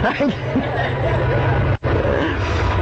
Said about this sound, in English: So what I have seen, that's a long train.